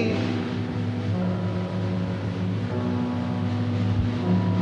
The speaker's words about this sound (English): Noon by the clock, and so still at the dock, you can hear foghorn miles away.